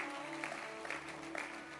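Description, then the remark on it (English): A crowd claps together in a steady, dense patter that fills the whole stretch, with a low sustained musical hum underneath. “Clap your hands.”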